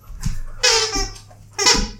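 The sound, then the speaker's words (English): A dog chews a squeaky toy, giving two loud, shrill squeaks about a second apart, with a soft thump and a faint squeak in between and no talking. “Oh, here comes the squeaky toys. Squeaker. Squeaker toy.”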